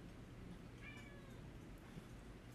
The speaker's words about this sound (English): The cat's talking.